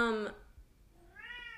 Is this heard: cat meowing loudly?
yes